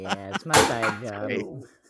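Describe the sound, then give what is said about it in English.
A single sharp, loud snap as empty latte cups are thrown down, landing amid a person's drawn-out, animated vocalizing that continues around it. “Oh, so you're throwing the push latte, the empties, yeah.”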